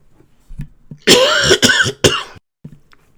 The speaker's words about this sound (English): Sorry, the cough again. As I'm talking, it's drying my throat out, and then it's just, I just want to hack and cough all the time.